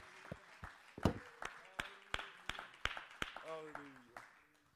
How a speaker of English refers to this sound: Why don't you clap your hands and magnify the name of the Lord?